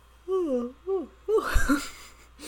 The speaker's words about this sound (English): Yawns. I think that means it's time to wrap this up. Yes. Considering I'm sitting here yawning and it's like 9 o'clock.